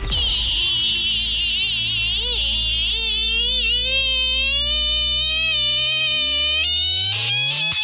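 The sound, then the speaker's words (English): A voice imitates a creaky door in a studio: one long, strained, wavering creak that bends up and down in pitch for about eight seconds, loud, with no talking. “I'll do creaky door while you're thinking.”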